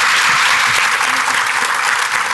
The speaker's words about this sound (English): Big round of applause for our panelists, everybody.